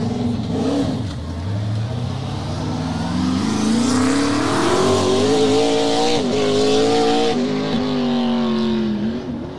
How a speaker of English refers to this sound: I think that's a NASCAR that has had turbos added to it. I could hear them a little bit. I think I saw that car 2 years ago with a different livery, but yeah, they have turbos on it now. And there's a nitrous bottle in bolted to the cage.